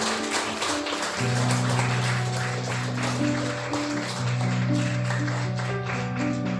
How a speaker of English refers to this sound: So today, before we end, let's give the Lord the loudest clap offering that we can give.